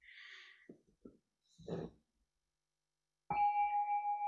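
A few soft rustling, breathy noises, then a single bell is struck after a piece of poetry and rings out clearly, its sustained tone shimmering with a gentle pulsing waver as it hangs in the quiet.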